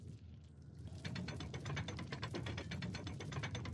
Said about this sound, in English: That opened the spider lair door.